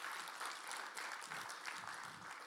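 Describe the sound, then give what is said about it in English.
An audience claps their hands in a dense, steady wash of overlapping claps that holds at an even level for a couple of seconds, with no clear voices over it. “Oh, that's worth clapping your hands for all over the house.”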